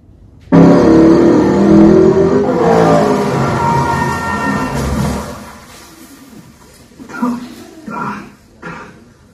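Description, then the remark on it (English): Loud car engines roar and rev together for several seconds in a movie clip, their pitch sweeping up and down, then fade as a few short bursts of voices come through. “So if you see what you see in it besides just the cars.”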